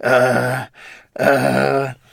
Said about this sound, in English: You're just breathing into the mic. I'm thinkatizing. This is why we don't do shows together anymore. You just breathe into the mic. Breathing while I'm thinking.